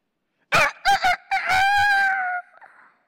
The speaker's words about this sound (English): What is wrong with you chickens? Don't you know when to wake up and when to crow and when not to crow?